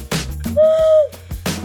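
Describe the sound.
A single breathy, hollow hoot made by blowing into cupped hands, mimicking an owl. The steady tone lasts about half a second, fairly loud, framed by brief rustles and breaths.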